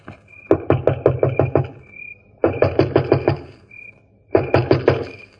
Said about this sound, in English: Stand where you are, and I'll go knock on the door.